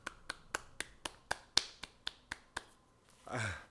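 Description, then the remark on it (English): One person claps about ten times in a quick, steady rhythm, each clap a sharp, crisp slap, followed by a short breathy voice sound at the end. “But everybody else, do a little clap.”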